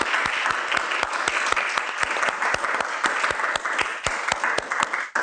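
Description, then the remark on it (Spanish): A crowd breaks into loud, steady applause for Jesus, dense clapping with sharper individual claps cutting through, holding for about five seconds before stopping abruptly. No one speaks over it. “Por eso te invito a que desde tus hogares, tus casas, démosle un fuerte aplauso a Jesús que está a nuestro lado.”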